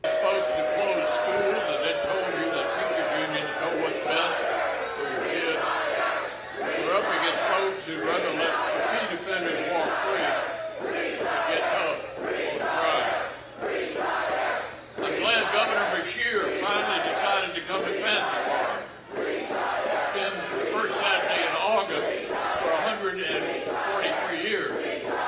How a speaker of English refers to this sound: They are chanting retire. I thought it was free tires.